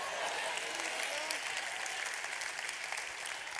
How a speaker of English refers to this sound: I still hear way too many ladies clapping and not enough brothers. But it's okay, brothers.